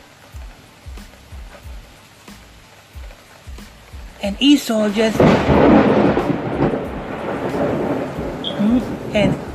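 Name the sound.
thunder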